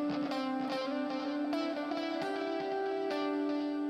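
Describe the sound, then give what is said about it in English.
A sustained electric guitar tone played through a GP100 multi-effects processor, with processed, slightly distorted character, rings out, notes shifting in pitch every half second or so, steady and loud with no talking. “Oh no, we're listening to the GP100. That's why it's a little off.”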